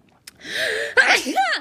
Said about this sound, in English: Oh, motherfuck. I'm so sorry, you guys. I'm not even going to edit that shit out because that's just how I sneeze. I'm a yeller when I sneeze, which is probably another thing my ex hated me for. He was always like, why are you so loud?